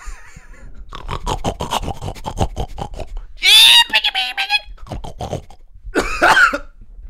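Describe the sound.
A woman in a competition makes rapid, snorting pig grunts in a rhythmic burst, then breaks into loud squealing oinks, with a couple more snorts and a final high squeal.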